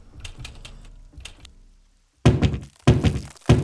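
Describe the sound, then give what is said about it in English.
Someone pounds on a door to break it down: a few light rattling clicks at first, then a brief silence and three heavy, booming thuds about half a second apart, each loud and ringing. “As whoever was behind the door was now pounding to break it down.”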